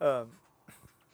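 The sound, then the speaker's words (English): A single sharp, loud dog bark rings out at the start, followed by softer breathy sounds and faint movement. “And, oh, stupid dog. I can't stand barking on this, especially when it comes on the podcast.”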